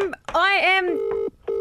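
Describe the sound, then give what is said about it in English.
Phone dialing tones sound clear as someone rings a person on their phone: a brief warbling electronic tone, then two steady, even beeps separated by a short gap. “I'll ring him on my phone.”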